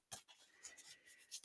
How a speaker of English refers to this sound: Just finishing up shuffling the Witch's Wisdom deck.